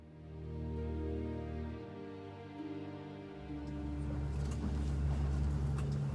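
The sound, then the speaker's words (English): A boat's engine drones steadily with a low, rumbling hum and strong harmonic bands as it travels along the River Blackwater towards Northey Island, rising slightly in intensity toward the end as splashing water and faint chirps mix in. “Just like those Vikings, I'm making my way along the River Blackwater by boat towards Northey Island.”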